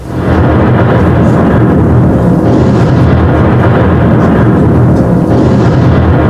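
A massive volcanic eruption of a mountain in May 1980 roars continuously, a deep, loud, rumbling blast that fills the whole stretch without letting up, heavy low-end booming churning throughout with no voices.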